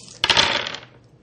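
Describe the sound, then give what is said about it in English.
Dice rolled onto a table for an attack in a game clatter in a sharp burst of bright rattling clicks that tumble and quickly fade over about a second, with no voices. “Alright, he is rolling, persuasive corruption, and he's going to attack you purity.”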